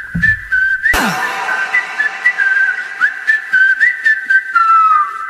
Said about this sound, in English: Oh, there they are, whistling.